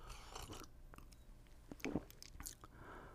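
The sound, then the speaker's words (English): A quiet sip of hot ginger tea, the second sip, with a brief wet slurp and a few soft mouth clicks and swallowing noises against a hushed background, no talking. “I'm gonna take another sip, second sip.”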